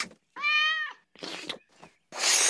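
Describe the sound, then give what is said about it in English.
A cat lets out one loud, drawn-out meow, followed by a few harsh, noisy bursts like hissing or spitting. “You paper mache'd my cat?”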